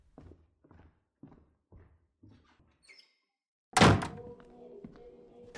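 Several soft footsteps approach, then a heavy door thuds shut with a loud impact that rings out briefly afterward. No one speaks.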